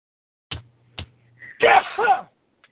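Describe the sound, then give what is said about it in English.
A single loud human sneeze by the speaker, with a sharp breathy burst, preceded by two quick dull taps and a brief low hum. “Also me sneezing.”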